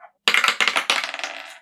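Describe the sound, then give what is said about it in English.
A four-sided die, rolled for Bardic Inspiration, clatters across a hard tabletop, a burst of quick rattling impacts that tumble and settle within about a second, with no voices. “And did you roll the Bardic Inspiration dice? Yeah. It's a d4? Yeah, I rolled it.”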